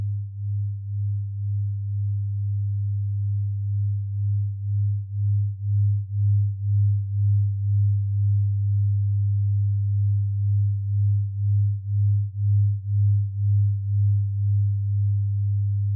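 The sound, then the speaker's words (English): Binaural beat tones, made by playing a different tone in each ear at a slightly different frequency: a steady, low, pure hum that swells and fades in a slow, regular pulse, continuing evenly throughout with no voices or other sounds. “here's an example of a binaural sound file”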